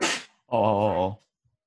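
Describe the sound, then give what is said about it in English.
A single sharp, breathy sneeze bursts out, then after a short pause comes a drawn-out voiced groan with a wavering pitch. Nobody speaks. “Bless you.”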